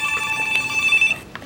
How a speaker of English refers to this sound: Oh, good, a phone call.